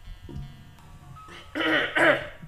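throat clearing

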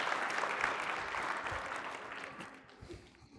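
audience applause

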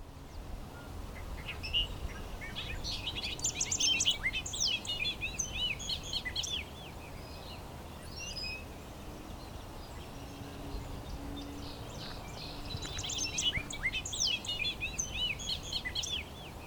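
bobolink song

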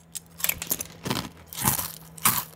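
crunching breakfast cereal

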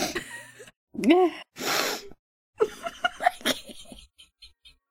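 sneeze

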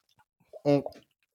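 sipping water

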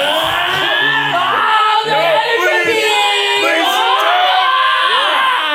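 people screaming and yelling

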